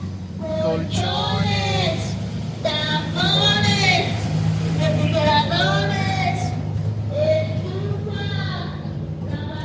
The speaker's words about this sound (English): I'm gonna wait for this for the truck to go by.